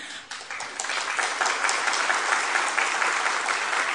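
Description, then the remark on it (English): An audience breaks into steady applause, many hands clapping in a dense, even patter that holds at a strong level throughout with no voices on top. “Now you've set the scene because you've clapped and they've done nothing, so at the end when they've done something, you'll have to work that up a little, right?”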